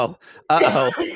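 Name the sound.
coughing fit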